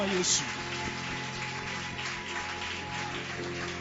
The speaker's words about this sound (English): I said hallelujah. Amen. Give Jesus another mighty hand clap.